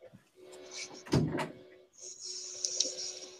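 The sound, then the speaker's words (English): A door is opened and closed to let a cat out, with a sharp knock and rattle of the latch followed by a longer, airy scraping sound as it swings shut. “My cat needed out. Sorry, she was sitting at the door.”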